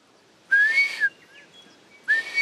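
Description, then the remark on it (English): A person whistles two breathy, rising-then-level notes imitating the call of a whio (blue duck), the first about half a second long, the second starting after a short pause, fairly loud with no talking. “So they just make a sort of neary whistle like that. That's a pretty poor imitation, but we're on the hunt for a whio, a blue duck.”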